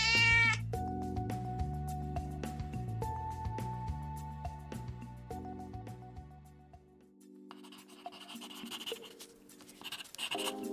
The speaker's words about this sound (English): Nice kitty.